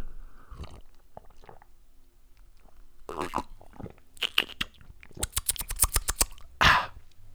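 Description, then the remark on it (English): Sipping from a can of white Monster energy drink: a few breathy slurps, then a quick run of small clicky gulps and a final sharp exhale, with no one talking. “But we've got a monster, a little white monster, which we're going to take a sip on.”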